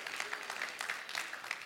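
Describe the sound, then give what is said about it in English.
Sparse, scattered claps from an audience at a Sunday service, a few hands patting unevenly at a low level, with no speech over them. “Like two claps. That's not clapping.”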